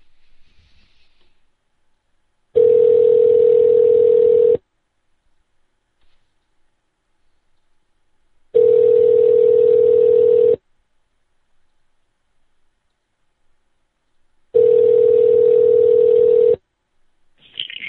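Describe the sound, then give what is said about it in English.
A phone line rings three times, each steady two-second burrr followed by about four seconds of silence, loud and clear with no voices; a faint blip at the very start may be a keypad tone. The call is to a poker room, reached by pressing 2. “But you said press 2, so that's easy. I can press 2.”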